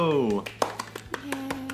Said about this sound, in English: Do I clap for myself? Is that narcissistic? No.